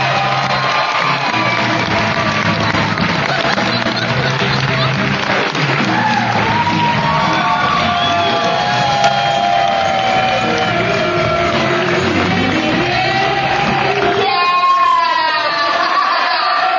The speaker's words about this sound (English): Get a big round of applause going right now for …!